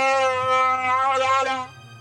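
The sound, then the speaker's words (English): Chewie roars in the Millennium Falcon cockpit, a loud alien creature roar. It is a single sustained growling howl with a rich, wavering pitch that lasts under two seconds and then cuts off, leaving a low steady hum. “Chewie doesn't like it. He roars.”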